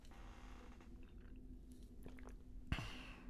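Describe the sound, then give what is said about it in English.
Quiet mouth sounds of someone drinking water, with soft wet noises building to a single distinct gulp near the end. No one speaks. “Excuse me. Water.”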